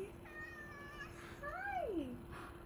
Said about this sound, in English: I hope that we caught your meow so that you're memorialized forever.